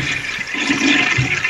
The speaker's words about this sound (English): I keep trying to flush the toilet to make the sheets go down, but they go down a little and then nothing.